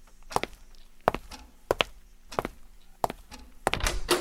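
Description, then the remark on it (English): A door being opened: a run of sharp wooden thunks and latch clicks at irregular intervals, ending in a short scraping swish as it swings. No one speaks. “Would you get the door while I fix us something to drink?”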